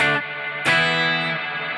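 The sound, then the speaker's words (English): An electric guitar through a heavy reverb pedal with the depth turned all the way up and lots of pre-delay, a second strike blooming into a dense, dark, sustained wash that barely fades, with no voices. “It doesn't seem to be decaying with the depth all the way up. It seems like it's almost 100%.”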